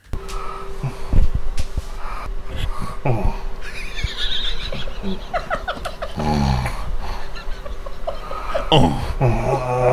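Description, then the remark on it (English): Steady snoring breaths from a sleeping person broken by drawn-out, wavering moans that rise and fall in pitch, with a louder groan near the end; no one talks. “An example of the moaning and snoring.”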